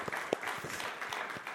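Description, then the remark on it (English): A church audience breaks into applause, rejoicing over a budget surplus, a dense, steady patter of many hands clapping together at moderate loudness, with a few sharper claps standing out and no talking over it. “The health unit is not prohibiting clapping, praise the Lord.”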